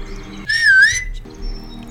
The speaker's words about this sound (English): heard … whistle